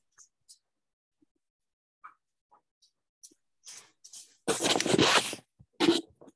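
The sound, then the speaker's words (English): Curtains are pulled shut: a few faint clicks and taps, then a loud rasping slide lasting about a second, followed by a brief second swish. “Had to close the curtains.”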